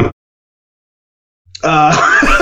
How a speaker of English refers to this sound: Sorry, I was choking on a cough drop.